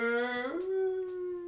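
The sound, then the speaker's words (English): A voice imitates a long fart with one drawn-out, buzzy tone that bends upward in pitch early on, then holds steady and tapers slightly, alone without other talk. “she just farted for like 3 minutes”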